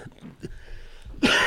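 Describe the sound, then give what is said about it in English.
A single harsh, loud cough from a person with COVID bursts out near the end, following a quiet stretch with faint low rumbling. “Sorry, COVID.”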